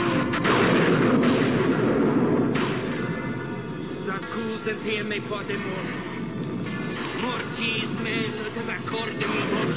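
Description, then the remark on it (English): A loud, muffled explosion bursts out at once and rolls on as a dense, crackling rumble that eases slightly after a couple of seconds, with indistinct voices mixed into the noise. “I'm always surprised that poor Prince Humperdinck survives that explosion.”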